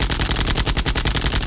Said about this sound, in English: Instantly, several panels about the room slide aside and outstep a number of armed guards. Next moment, Superman is the center of a deafening machine gun barrage.